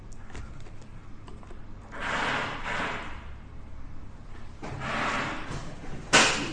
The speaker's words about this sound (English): They're drilling, they're fixing benches, I think, but again, they couldn't pick a better time to do it, I guess.